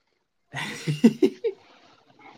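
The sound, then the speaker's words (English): A cat vocalizes in a quick run of short, chirpy meows, three or four brief bursts in a row before trailing off into quiet. “Hello, cat.”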